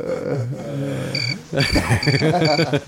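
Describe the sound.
A cricket chirping sound effect: short, high chirps repeat in evenly spaced bursts over a louder voice-like hum and talking, the chirps staying steady and fairly faint in the background.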